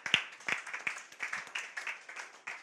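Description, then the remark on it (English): An audience claps together, a dense patter of many hands forming brief, moderately loud applause with sharp individual claps standing out, lasting a few seconds without any talking. “Yeah, I thought you clap.”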